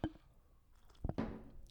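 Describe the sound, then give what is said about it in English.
Quiet wet slurping as someone sips a mixed drink with no ice and a piece of lime: a soft smack at the start, then two short bursts of sipping near the end, with no talking. “I'm going to take a little... Just gonna take a little pre-sip.”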